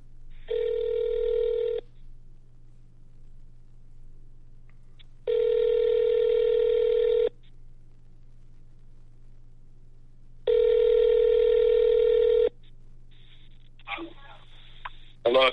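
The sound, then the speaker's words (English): An outgoing phone call rings three times, each ringback tone about two seconds long with regular pauses between, over a low steady hum, before a brief voice answers at the end. “Let me just make another phone call here real quick.”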